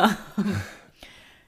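A person snoring in the background: two short, rough, low snorts in quick succession, then a faint click as the sound trails off. No one speaks.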